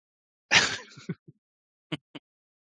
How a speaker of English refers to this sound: And... Sneeze.